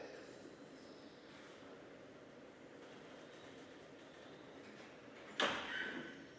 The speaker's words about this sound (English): Also, I've noticed the lifts, just the doors randomly open and close, even though there's nobody using them.